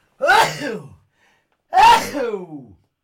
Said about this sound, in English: I'm going to sneeze.